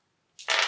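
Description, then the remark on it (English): Dice rattle and tumble during a tabletop game roll for successes, a short, dense clatter that starts abruptly after a moment of quiet and stays loud until the end. No one speaks. “I need more dice in this.”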